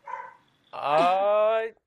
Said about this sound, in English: We've now escalated to the greyhound barking portion of our interview, so I let me know understand. if that's an issue.